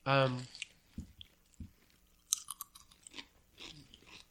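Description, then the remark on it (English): Someone chews crispy baked snack chips made of potato, corn and wheat starch, a series of sharp, irregular bites and crackles after a brief voiced hum at the start. “It's like a tortilla shell mixed with a corn chip. Yeah. Hmm. It's got a good, like, round, savory flavor, but...”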